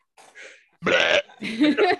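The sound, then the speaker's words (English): A loud, guttural burp erupts after a faint breathy sound, followed by further rough, throaty vocal noises. “You shouldn't have said, oh, that was a weak burp.”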